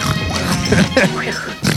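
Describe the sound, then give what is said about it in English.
A person loudly imitates a pig eating, with continuous snorting, grunting oinks and slurping noises for about two seconds and no actual speech. “show them how the piggy eats, buddy.”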